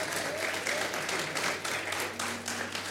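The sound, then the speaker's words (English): A large crowd applauds steadily for the speaker's 50th birthday during a Sunday sermon, dense overlapping claps forming a continuous wash of sound with a low hum beneath, sustained without pause for the full few seconds. “Today, I'm 50, and yes, you can clap for that.”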